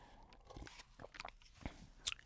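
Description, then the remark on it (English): Someone sips water: soft slurps, wet mouth clicks and a couple of quiet swallows, scattered irregularly over a couple of seconds with no talking. “Hold on, let me sip some water.”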